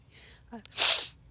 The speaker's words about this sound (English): I'd rather they just copy me sniffing when I have allergies than, like, my little cackle, but...